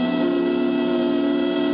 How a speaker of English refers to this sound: Just a year before, early on New Year's morning, Lydia Winters had stood at the door of her uncle's apartment with Elliot, listening to the whistles ushering in the new year.